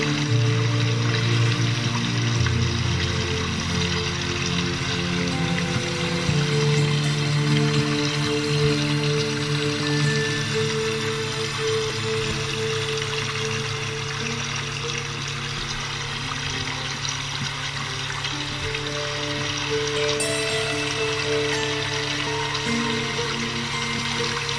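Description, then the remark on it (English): Water flows and trickles steadily throughout, a continuous bubbling wash layered over soft sustained musical tones, with no voices. “Together, water and music create an orchestra of sound.”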